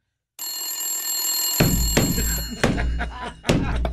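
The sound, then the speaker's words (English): A telephone bell rings continuously with a bright, shrill tone, while several heavy thuds and clattering bumps break in partway through and continue after the ringing stops. “I was answering the phone before I ever picked it up.”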